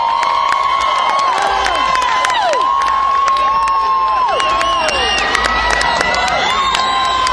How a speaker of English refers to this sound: the stage, just looking at the crowd, listening to the crowd going crazy for him.